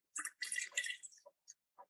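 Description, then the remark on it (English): Wine (Viroy and Méchavaux single-vineyard wines from Meursault) pours into a glass in a short gurgling stream, clear, then trails off into a few light drips and clinks. No one speaks. “Right, so now you need to pour us the Viroy and the Méchavaux.”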